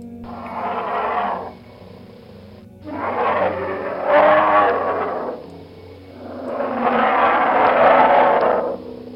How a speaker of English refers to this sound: And that is a bear.